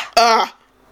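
A single loud cough bursts out abruptly and lasts about a third of a second, voiced and raspy, then fades into faint background noise.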